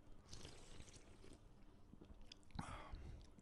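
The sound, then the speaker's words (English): Sipping of a fizzy ginger beer, with soft wet mouth and swallowing noises over a few seconds and one louder slurp near the end, no talking. “Let's have a cheers and a little sip.”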